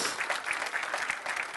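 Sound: audience clapping hands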